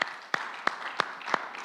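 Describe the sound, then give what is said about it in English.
A crowd claps in steady unison, giving the Lord a mighty hand clap: sharp hand claps land at an even beat over a bright wash of scattered applause, with no voices. “Let's give the Lord another mighty hand clap.”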